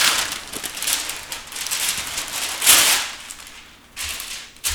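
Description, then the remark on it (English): Crinkly rustling of parchment paper being pressed into the bottom of a baking pan sprayed with cooking spray, with sharper crackling bursts near the middle and end of the handling. “Okay, ir išklok dugną pergamentu popierium.”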